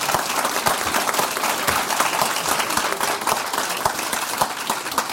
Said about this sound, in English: And I know that it's a really, really cheap and easy thing to do, but I would just love it if you collectively would just give yourselves a round of applause for that contribution that you're making to make this a country to be proud of.